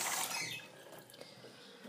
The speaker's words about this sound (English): Now I'm refreshing their little birdie water trays as well, which are covered in ants.